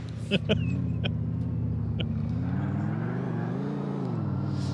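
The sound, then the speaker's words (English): A steady, droning video game car engine hums throughout as the car is driven at full throttle without the parking brake, its pitch rising and swelling slightly as it revs, with a few sharp clicks and knocks near the start. “We don't need no parking brake. I'll the throttle shoot. On this car has two settings, on and off.”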